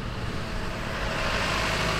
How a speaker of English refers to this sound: If we can ignore the freeway buzzing in the distance and the concrete that surrounds the LA River channel, we can almost picture this place as it must have been in the 1900s